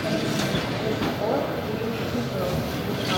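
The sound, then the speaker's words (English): Steady rumble of a train at a platform of the Kyiv train station in Ukraine in the evening, with a dense wash of low mechanical noise and murmuring voices in the background, fairly loud and continuous throughout. “So we're at the Kyiv train station and it's the evening.”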